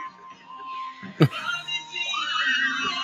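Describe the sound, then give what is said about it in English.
A woman's high-pitched scream rises and wavers for about a second from a played recording, preceded by a sharp, brief knock and a murmur of voices. “Just screaming.”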